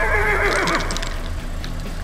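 A horse lets out a loud whinny with a wavering, descending pitch, followed by soft snorting and faint clip-clopping hooves against a steady low rumble.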